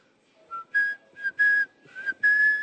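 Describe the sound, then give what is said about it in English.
Someone whistles Omar's tune from The Wire, a short, clear melody, a run of several sustained pitched notes with brief gaps between them, rising and holding steady; no talking. “What is that? Whistle Omar here.”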